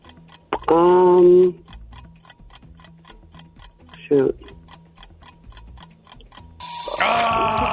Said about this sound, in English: There's the timer. We're going to see how many of the five questions you got correct.